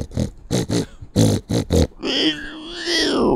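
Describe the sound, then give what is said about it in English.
A person imitates a truffle pig snorting: six short, rough snorts in quick uneven bursts, followed by a longer wavering squeal-like grunt, all loud with no other talk. “I was like a homing pigeon or a truffle pig.”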